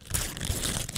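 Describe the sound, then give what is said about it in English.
A gift's wrapping paper is ripped open, crinkling and tearing in a quick, continuous burst of crackly rustling that lasts about a second, with no talking over it. “I'm eagerly shaking it right now. I'm going to rip it open.”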